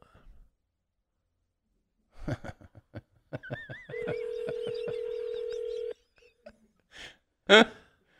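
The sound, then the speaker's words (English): A phone call rings with a steady electronic tone for about two seconds, then abruptly cuts off into silence without going to voicemail, preceded by a quick series of clicks and followed by a brief breathy sigh. “And then it just cut off. It didn't go to voicemail.”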